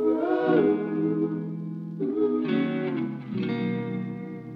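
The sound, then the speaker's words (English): An electric guitar, recorded to an old cassette tape and sent through a Roland 404 sampler with a vinyl simulator effect, plays sustained, warm chords that shift a few times, with a slightly gritty, lo-fi processed character and some reverb. No one speaks. “And then that got sent through a sampler I love called the Roland 404. And it's got a cool vinyl simulator, so I added that on as well.”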